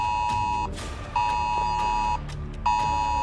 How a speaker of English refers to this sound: Before I can read it, my phone let out a loud Amber Alert noise.